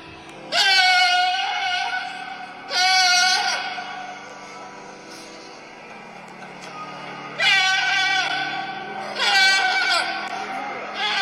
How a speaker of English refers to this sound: let's see if we can hear the goat Pablo singing sensation, Pablo the Goat